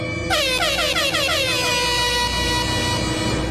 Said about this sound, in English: Air horn!